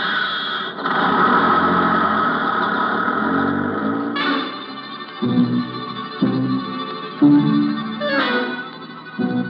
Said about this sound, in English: Colonel Lucius Porteous drives away in Acme's dinky little sightseeing bus.